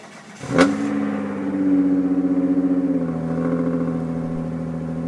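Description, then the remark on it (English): A car engine, recorded on a phone, starts itself once the electronics come on: it cranks and catches with a sharp burst, then settles into a loud, raspy rev that holds steady and dips slightly, with no talking. “the electronics come on and then it just starts itself”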